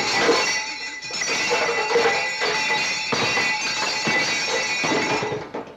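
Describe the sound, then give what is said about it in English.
A big barrel with bells on it is spun to pick which word goes to which contestant. It makes a steady rattling, jingling clatter of many small bells, bright and continuous for several seconds before cutting off. “All right, well, let's spin the big barrel and see just which word will go to which contestant.”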